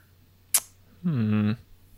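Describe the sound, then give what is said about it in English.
A sharp click is followed a moment later by a loud, steady electronic quiz buzzer tone as a contestant buzzes in on an Oscar History question, lasting about half a second, with a low-pitched harmonic drone that cuts off abruptly. “you have buzzed in.”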